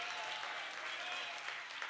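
A church audience applauds for the Lord, a dense, steady wash of many hands clapping at once that holds at an even, fairly loud level throughout without fading.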